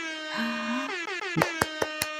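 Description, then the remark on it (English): A loud, buzzy air horn sound effect, played to welcome a guest, blares with a wavering, bending pitch, then a run of four or five sharp, evenly spaced thumps punches through it. No one speaks. “Air horns everywhere.”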